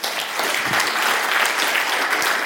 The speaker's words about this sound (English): And a round of applause for them.